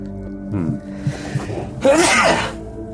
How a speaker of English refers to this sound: Bless you. You'll have to watch that. The air so here is very smoke. Dry. Every time he sneezes, his face changes again.